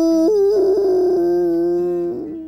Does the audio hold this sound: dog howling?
yes